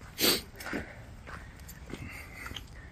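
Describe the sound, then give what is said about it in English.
A mid-size Doodle dog, a poodle-Labrador cross, being walked in a forest gives one sharp snort, followed by a few softer snuffles and sniffs as it moves past, with faint footsteps in the background. “There's somebody out on a walk with there's a dog breed, new breed here called Doodle, which is, I think it's a cross between a poodle and a Labrador.”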